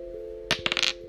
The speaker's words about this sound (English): I'm going to go to the Vintage Oracle deck, and I'm going to roll my dice.